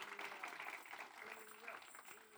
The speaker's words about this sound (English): will you give everyone, give her a round of applause, please?